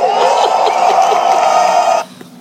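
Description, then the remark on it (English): A movie crowd cheers as a herald introduces Sir Ulrich von Lichtenstein, in a loud, dense roar scattered with shouts and whoops, holding steady for about two seconds before cutting off abruptly to near quiet. “The things this movie does well is, one, the crowd is really reminiscent of a modern-day sports crowd, which is fun.”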